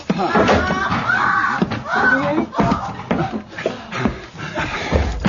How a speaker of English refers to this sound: Oh, Monsieur, the door of the room is locked and bolted. It will take too long to burst it open.